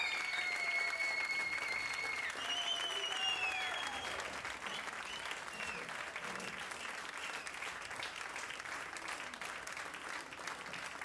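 A steady, dense round of applause for the kākāpō that mated this season runs the whole way through, with a few high, gliding whistles over it during the first few seconds before the applause carries on alone.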